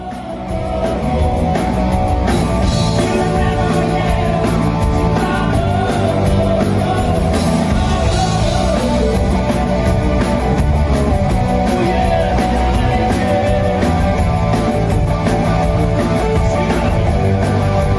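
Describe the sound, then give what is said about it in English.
A live rock band plays a 1983 track loudly and continuously, recorded from the crowd's perspective, with dense guitars, a steady pounding drum beat and a faint crowd yelling and singing along underneath, sustained throughout without pauses. “So if you are in America or Australia and you haven't seen the band, I'm going to play you a live version of us doing this 1983 track, which is a fucking ripper.”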